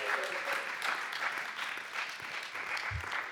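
A crowd applauds steadily, a dense wash of many hands clapping at an even loudness throughout, with a brief low thump near the end.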